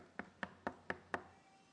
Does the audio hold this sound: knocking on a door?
yes